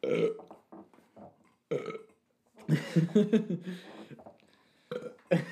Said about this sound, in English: God damn. I do be burping though.